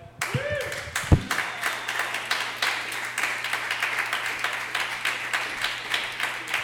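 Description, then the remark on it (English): An audience applauds comedian Brandon with steady, dense clapping that carries on throughout, opening with a brief rising whoop or shout from the crowd before the clapping settles into a continuous, fairly loud patter. “They're already clapping for Brandon.”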